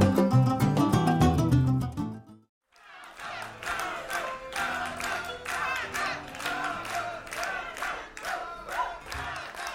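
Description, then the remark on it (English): A few seconds of music break off into a brief silence, then a big concert crowd roars, cheering and shouting over dense, steady clapping that carries on to the end. “Man, do we have an enthusiastic crowd or what?”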